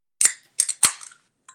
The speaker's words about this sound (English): It is Cidergeist Bubbles. Ooh, Cidergeist. Why don't you crack that shit open?